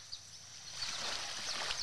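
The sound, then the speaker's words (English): Gentle low-tide ocean waves, played from a sound app, wash in with a soft, steady hiss that swells a moment and stays fairly quiet, with no voices present. “But they have so many rainy nights, rainforest meditation, birds in the rain, low tide waves.”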